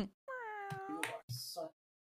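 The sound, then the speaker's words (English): A cat meows loudly and insistently, one long drawn-out wavering cry followed by a shorter, rougher meow, all within about two seconds, as it is about to be let outside. “I got to let the cat out.”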